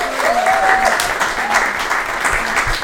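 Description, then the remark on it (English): A room full of people claps steadily for the guests, a dense, continuous patter of applause at a fairly loud level, with a faint whistle or cheer rising briefly near the start. “Let's have a round of applause for our guests today.”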